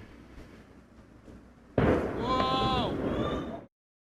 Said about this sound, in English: And so here's what it was, there's people watching, there was an initial explosion, and so people started filming it, just like there was an initial explosion in Beirut and they started filming it. Here's what happened to Tianjin in 2015.